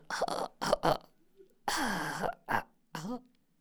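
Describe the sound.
A person fakes a cough: a quick run of short, harsh bursts, then a longer, raspy, strained hack followed by a few more choppy coughs. It is an impression of someone coughing with coronavirus.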